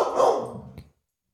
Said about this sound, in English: I do not know why my dog is barking out the door. I think she has to go piss. I'm not sure.